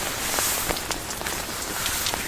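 Steady rain falls with a dense, hissing wash, scattered louder drops pattering. No voices, just the even rush of rainfall throughout.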